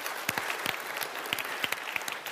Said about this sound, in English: Give all our volunteers a hand. They did great. They did great.